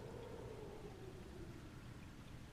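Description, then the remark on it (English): Steady, muffled rain with a low rush of wind outside, heard faintly from indoors under a roof as a continuous soft wash of sound with no voices. “We can still hear the rain and the wind.”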